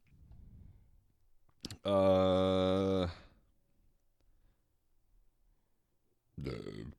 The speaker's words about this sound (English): Dude, every podcast we burp. You have to. All right. We burp cast. We burp. We burp cast.